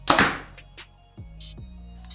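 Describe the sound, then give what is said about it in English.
A compound bow (Evoke 31, 29-inch draw length, 72 pounds, 90% let-off) fires a 450-grain arrow at 293 feet per second with a single sharp, loud snap and thwack, followed by a brief fading rattle and a few faint clicks. “And then now our 450 grain arrow.”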